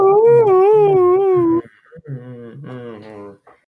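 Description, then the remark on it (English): A voice imitates the eerie wail a breaking air raid siren makes, the 'siren head' noise: a loud, warbling howl with wavering pitch, then a second, quieter and lower warbling phrase after a short pause. “But when they break, that is the noise that they make, is the siren head noise.”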